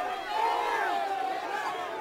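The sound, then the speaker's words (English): A crowd surrounding the speaker murmurs steadily, many overlapping voices blending into an indistinct babble with no single words standing out. The level stays fairly even for the whole two seconds. “But by now, the whole crowd was surrounding us.”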